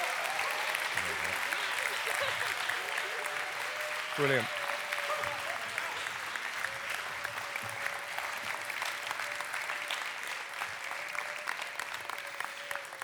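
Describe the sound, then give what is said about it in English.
Sustained audience applause, a dense steady wash of clapping that fills the whole stretch at an even level, with a brief spoken word early on and a faint held tone underneath. “Would you guys give these guys a huge round of applause?”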